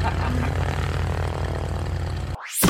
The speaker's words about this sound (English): There's a helicopter to winch us out of this link.